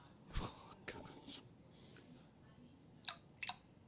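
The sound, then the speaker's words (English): A voice imitates little drips of urine: a handful of short, wet mouth clicks and pops, irregularly spaced and quiet, with soft breathy sounds between them. “And then do you want to hear a nice little drips?”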